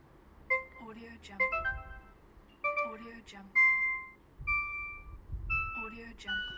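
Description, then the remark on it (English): A series of digital beeps: short, clear electronic tones in quick melodic runs that step between pitches, repeating in several bursts over a low background rumble. “I quite like this one. It's a digital beep.”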